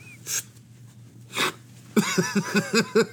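Hiccups: two sharp, breathy bursts spaced about a second apart, then a quick run of six short, squeaky hiccup sounds in a steady rhythm.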